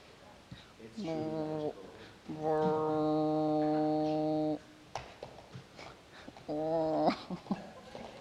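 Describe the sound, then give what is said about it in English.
A deer responds with three drawn-out, nasal calls: a short bleat, then a long steady one lasting a couple of seconds, then another brief call after a pause. The calls are clear, with faint background noise between them. “Now, let's hear from the deer's response.”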